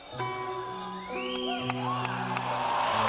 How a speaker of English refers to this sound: Listen to the crowd. It's a small venue. Crowd freaks out. Listen to that.